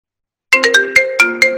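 signal or alarm, mobile phone ringtone

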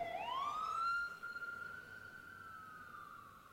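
vehicle, fire engine siren passing

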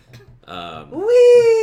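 human body sound, fart

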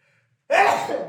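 human body sound, sneeze

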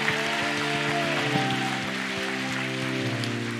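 crowd, audience applauding

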